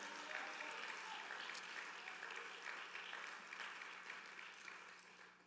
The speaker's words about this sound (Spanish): Denle un fuerte aplauso al Señor con todo el corazón.